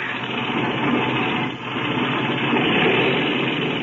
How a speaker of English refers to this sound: Okay, clean out that engine while I climb into the front cockpit.